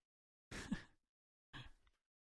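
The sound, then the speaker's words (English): Someone yawns, a breathy, partly voiced exhale, followed about a second later by a second, shorter breathy yawn; no talking. “Yawning.”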